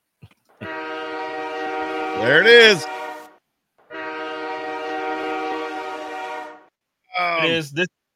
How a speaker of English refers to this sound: I think it's time for the train horns. Train horns. You ready?